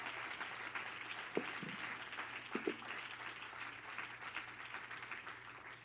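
An audience at an evening service gives the Lord a hand clap of praise, steady, dense applause that keeps up for several seconds without fading, with a faint low hum beneath and a couple of brief thumps.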